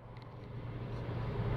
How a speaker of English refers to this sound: we're going to hear from … right now as he is driving to work